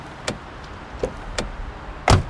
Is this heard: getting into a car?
yes